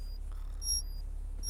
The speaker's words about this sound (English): I'm sure I canceled all alarms quite a while ago. This is the mandatory 9 o'clock alarm.